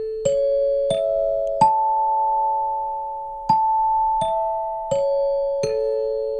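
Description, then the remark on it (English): A clear, ringing chime melody of seven bell-like strikes: three rising notes, a short pause, then four more stepping back down, each tone sustaining and overlapping the next, with no talking. “Love those chimes.”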